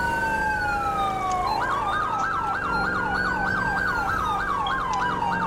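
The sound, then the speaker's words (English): An emergency vehicle siren sounds loud, opening with a long falling wail before switching to a rapid, steady hyper yelp tone that warbles up and down continuously over a low road rumble. “honestly, you guys, let me know what you guys think of the siren, because I'm thinking of changing it, because the tones are too long, and they seem to get annoying, especially the hyper yelp, because of how loud they are.”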